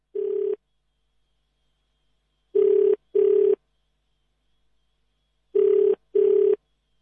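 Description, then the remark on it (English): A phone call that cannot get through rings out unanswered: a single steady tone burst, then two pairs of quick double rings separated by pauses, clear and fairly loud, with no voices. “Oh, Rochelle, as you can hear, Sister Rani, we still can't get through to her.”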